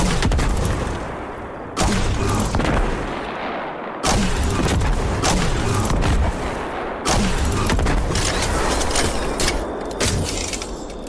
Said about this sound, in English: Let's listen to Love and Death, the grenade launcher.